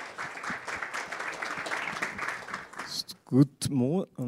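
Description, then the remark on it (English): A dense crowd applause of steady, rapid clapping welcomes the speaker of a conference session, filling the first three seconds at a moderate level, then fades as the speaker begins speaking. “Please give a round of applause to the speaker,”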